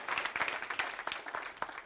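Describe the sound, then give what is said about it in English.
An audience at Calvary Chapel claps their hands together, a steady patter of many overlapping sharp claps with no clear rhythm, moderately soft and continuing throughout. “I'm waiting for somebody to clap your hands and say something.”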